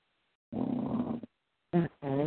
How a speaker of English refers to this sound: Someone is snoring.